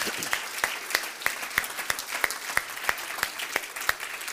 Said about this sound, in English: I want to say thank you to our men, and I wonder if just one more time we could clap our hands in appreciation for their efforts.